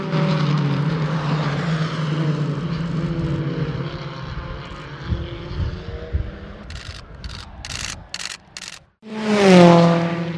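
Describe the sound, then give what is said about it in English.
Racing cars roar past the first bend at Thruxton during a race: a steady engine drone, then several quick whooshing passes in succession, ending with one loud car screaming by, its pitch sweeping. “Matt Neal in third or fourth place as the cars roar past the first bend here at Thruxton.”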